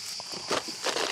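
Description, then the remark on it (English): Crunchy food being ripped apart by hand into chunks, a dry crackling tear that comes in a couple of loud bursts with brittle snapping between them, and no voices. “Oh, it's crunchy.”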